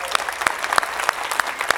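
A group of people clapping together in a steady, fairly brisk rhythm, sharp bright claps standing out above a dense wash of applause with no talking, given in special recognition of a member of the ministry staff team.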